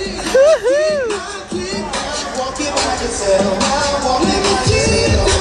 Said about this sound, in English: This crowd is crazy, people. My son's team, they just won the last round right here, right now.